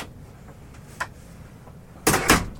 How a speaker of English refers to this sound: That's me closing the door to a sun-drenched, smallish office that hopefully won't get too hot.